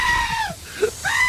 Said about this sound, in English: That's not a normal goat. No, they do a bit of roaring. They do. Yeah, but not like that.